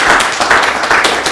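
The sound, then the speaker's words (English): A short burst of applause for passing a man flu quiz: several hands clapping in a fast, dense patter that stays loud and steady throughout, with no voices over it. “Ooh, round of applause.”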